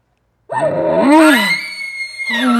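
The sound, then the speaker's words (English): A loud imitation of a bull elk call, made to cut off a bull with more emotion: a single rising, strained bugle with harmonic whistling overtones that breaks into a raspy, grunting tail, with no talking. “And now I cut him off with a little bit more of emotion.”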